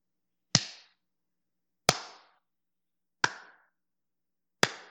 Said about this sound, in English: That was the slow clap for who cares.